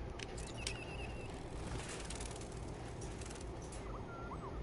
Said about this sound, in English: Even the birds AI, they ain't even real.